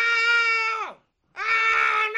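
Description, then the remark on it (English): A man screams twice in loud, strained bursts, each just under a second long. The first one slides downward as it ends, and a brief silence separates it from the second. “Okay, the price is just a man screaming or somebody turning tricks behind the gas station to pay for a gallon.”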